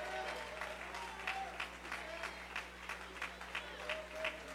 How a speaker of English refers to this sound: Oh, stand all over this place and clap your hands.